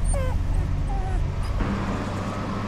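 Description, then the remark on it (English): A seal pup cries with a few short, wavering, whimper-like wails in the first second, over a low rumble that turns into a steady traffic-like hiss. “The little seal cried and cried.”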